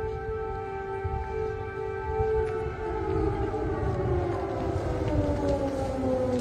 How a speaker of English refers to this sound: There's a missile siren going off.